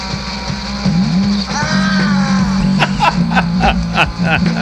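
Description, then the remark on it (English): A loud, sustained scream from a band's demo recording, with a wavering, sliding pitch, held over a steady low hum, then followed by a string of sharp, rhythmic bursts. “first scream.”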